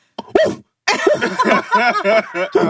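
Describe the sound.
A person mimics a dog with a couple of short, sharp woofs, then a longer run of yapping, growly barks, loud.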